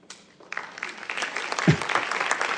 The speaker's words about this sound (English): And now, ladies and gentlemen, my brothers and sisters, would you please give a round of applause as we welcome to the stage for a special rendition,